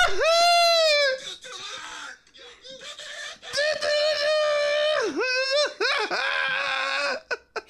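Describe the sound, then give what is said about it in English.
A person lets out loud, high-pitched happy screams on being given a gift by Nardwuar, several long wavering shrieks separated by short breaths, with no speech in between. “Like, he's so happy to see him, but he's just screaming.”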